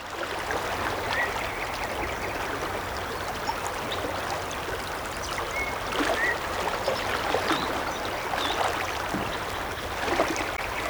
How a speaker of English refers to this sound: And here, the soundscape of the San Juan River.